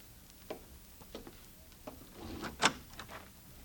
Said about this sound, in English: All right, Bob, open the door for them.